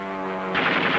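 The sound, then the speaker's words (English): A steady droning engine tone gives way to a loud, rapid burst of machine gun fire from aircraft attacking the surfaced German U-boat U-505 on June 4, 1944, the rattling shots blurring into a continuous roar with no voices present. “Commence firing. The planes open up first.”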